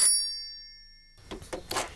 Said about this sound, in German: Kaum hatte Gabi aufgelegt, als das Telefon schon wieder klingelte.